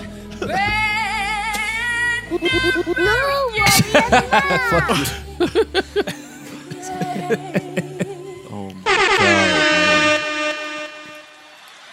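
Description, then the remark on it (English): Loud, blaring air horn blasts layered over a busy mix of other sound effects, with short stuttering honks in the middle and a long sustained blare near the end. “Get some air horns on this.”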